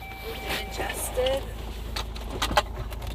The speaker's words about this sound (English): But here, I'll close the door, make sure we turn on the car, adjust your seat, adjust your mirrors.